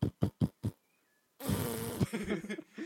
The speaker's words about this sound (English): Their bikes just like a collective of fart noises. But no, not a collective. I'd say just one continuous fart.